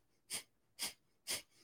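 Three quick, sharp breaths forced through the nose in an even rhythm, the Breath of Fire breath work practice, each a short hissing burst about half a second apart, with no talking.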